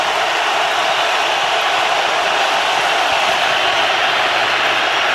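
crowd, stadium crowd roaring

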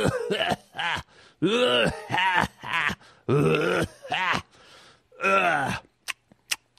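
human body sound, smoker's hacking cough

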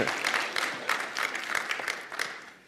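crowd, audience hand clapping

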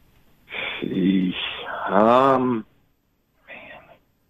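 human body sound, heavy breathing

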